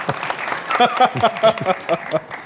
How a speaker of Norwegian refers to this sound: Jeg lagde en applaus for deg. Ja, det flaut.